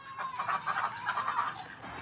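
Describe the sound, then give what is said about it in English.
Ducks quack in a quick, overlapping series of nasal calls, trailing off after a couple of seconds with no one talking. “Ducks, Max, you're missing out on the milk.”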